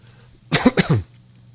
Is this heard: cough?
yes